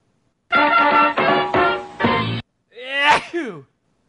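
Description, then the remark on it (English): A loud sneeze with a rising voiced intake and a sharp burst, preceded by a series of four strained, voiced bursts in quick succession. “Bless you.”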